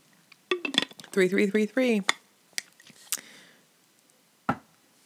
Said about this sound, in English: While you listen to me drink some water.